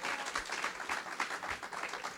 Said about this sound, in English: Dale un fuerte aplauso. Give the Lord a, long, a hand clap.